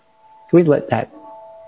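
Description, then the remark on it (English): A mantel clock chime hums as a steady, mid-pitched ringing tone throughout, briefly covered by a short burst of someone talking, then lingering softly on its own. “Can you hear that mantle clock?”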